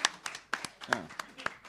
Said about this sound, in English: So please give a big round of applause to the Wesleyan. Take a bow.